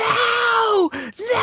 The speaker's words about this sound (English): He's just screaming, and it's you're great. Hurting like, you're hurting they're hurting me.